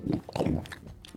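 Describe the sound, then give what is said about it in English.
Wet chewing and biting of bubble gum being swallowed and re-chewed, with a few irregular crunchy bites followed by softer mashing sounds over about a second. No one speaks. “How many times medically do I have to swallow it and then re-chew it and swallow it again?”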